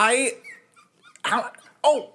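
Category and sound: animal, puppy whimpering and barking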